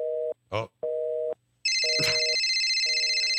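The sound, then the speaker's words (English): A telephone line clicks through tones, a steady busy signal pulsing on and off, then a bright electronic ringer buzzes over it, loud, with no one talking. “We got a busy signal and a ringer. I don't know. It seems to be ringing. What kind of phone is that?”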